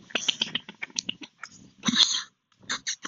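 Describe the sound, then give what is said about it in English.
A dog picking something up in its mouth, with irregular crunching and mouthing noises. There is a louder scrape partway through and a short pause before a few final bites. “The dog is picking up.”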